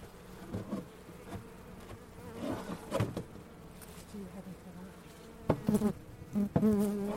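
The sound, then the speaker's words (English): Honeybees hum and drone inside an opened hive with a couple of supers and a colony long without a queen, a steady buzz with rising and falling swells, some individual bees flying past louder near the end, and a faint voice in the background. “There are still some bees in there. Strange that they're not going out, though.”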